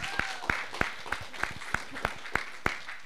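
A round of applause: sharp, evenly paced claps ring out about three times a second above a softer, steady wash of clapping from others, with no talking.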